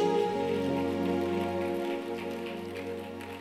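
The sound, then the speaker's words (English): An audience claps steadily as a clap offering to God, the dense crackle of many hands sustained for several seconds over held musical tones, easing slightly toward the end. “Give him a mighty clap, offering.”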